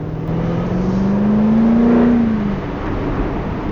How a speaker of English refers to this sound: And when I normally go into a corner, I come off the accelerator and then accelerate on the way out of the corner. On this car, you can just leave the accelerator down and it just goes around like a little rocket.